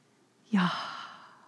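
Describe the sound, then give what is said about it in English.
A single slow, audible breath released, a soft breathy sigh that starts with a faint voiced edge and trails off over about a second, with no talking. “The rabbi highlighted how the sound of God's name is the sound of us breathing in and out.”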